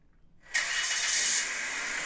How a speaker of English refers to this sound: So this car just like, you can hear it just rev up and just runs into the building at full speed.